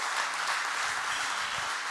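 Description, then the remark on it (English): A church audience claps together after a prayer in Jesus' name, in a steady, dense wash of applause that holds at an even level for the full two seconds, with no voices standing out above it. “Come on, church, give a great clap.”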